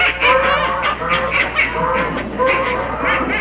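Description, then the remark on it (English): A large flock of hundreds of ducks at a duck pond in the early morning quacks loudly and continuously, many overlapping nasal calls rising and falling in quick bursts, with no voices. “we started out for the duck pond”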